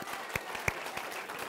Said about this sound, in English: What a great job from our kids, hey? And yeah, big round of applause.